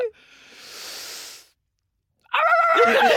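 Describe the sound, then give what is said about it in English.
A person imitates a big dog: a long breathy huff, a brief pause, then one loud, drawn-out bark-like vocalization. “A bigger dog.”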